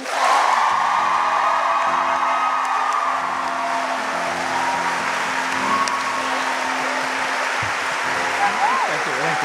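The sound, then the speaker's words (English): A live audience in DC bursts into sustained applause mixed with cheers and whoops, clapping to vote for the winner of a 30-second recap, a dense wash of clapping that holds steady and loud for the full stretch. “Those of us who think that Casper won this 30-second recap, please clap now.”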